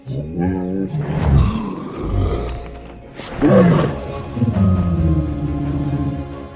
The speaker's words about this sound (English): In How to Train Your Dragon, the sounds of tigers, horses, and elephants were all used for the dragon named Toothless.